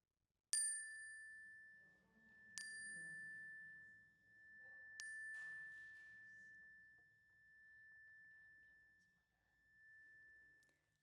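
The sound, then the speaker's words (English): A bright chime is struck three times during a prayer, a couple of seconds apart, each ring lingering and slowly fading, with faint murmuring voices low in the background. “And I invite you to speak them aloud as the chime rings so that we can hold them with you.”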